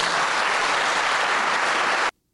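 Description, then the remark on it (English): A crowd applauds loudly, a dense, steady wash of clapping that holds for about two seconds and then cuts off abruptly into silence. No one speaks. “The crowd loved that one.”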